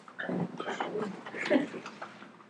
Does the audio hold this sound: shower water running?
no